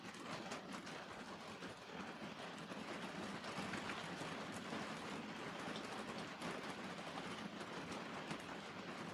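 Heavy rain from a thunderstorm passing overhead in the mountains pours down in a steady, dense roar with a constant crackling patter, holding an even loudness throughout, with no voices or other sounds.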